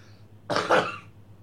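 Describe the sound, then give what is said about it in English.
A single sneeze, a sudden explosive burst that swells over about half a second and tails off quickly, standing alone with no talking around it. “Bless you.”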